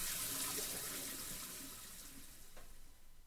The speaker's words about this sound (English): She stares straight down into the drain. A whirlpool has formed, and all the water glugs down, bubbling and spitting.